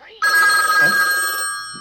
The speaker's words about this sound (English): And then the phone rings really loudly. Again, we're quiet, loud.